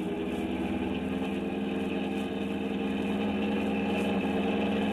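A car engine roars steadily at full throttle with the accelerator pressed flat to the floor, a loud, unbroken drone that holds its pitch for several seconds with no voices over it.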